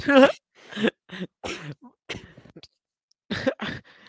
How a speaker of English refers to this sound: I made him laugh so hard he had to cough.